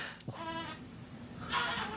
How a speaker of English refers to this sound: Do you hear my baby making a billy goat sound in the background, by the way? It's so cute.